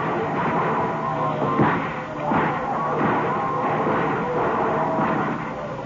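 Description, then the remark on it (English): Repeated bursts of gunfire crack out over a dense, steady roar of noise, the shots coming irregularly and fairly loud, with no talking; a gang firing and reloading as cavemen launch a mass attack. “Look out, gang. Reload quickly. Here they come.”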